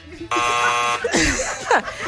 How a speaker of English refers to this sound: You got to push the buzzer.